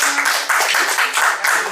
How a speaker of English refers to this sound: Shout out to everybody in the room again. Can I get a round of applause from the room, please?